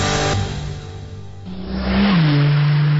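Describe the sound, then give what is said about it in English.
A car engine revs hard, its droning pitch dipping and then climbing sharply as the vehicle speeds up, loud throughout with no voices. “Hey, slow down, buddy. This ain't Talladega.”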